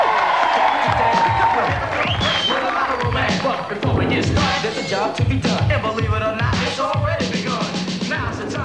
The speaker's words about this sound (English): So here we go, Andy Ruffell demo. Give him a big cheer. Come on.